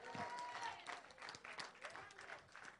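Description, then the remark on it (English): A crowd claps hands to the King of Kings in a dense, steady burst of applause that stays loud throughout, with voices calling out underneath. “If you believe it, clap your hands to the King of Kings.”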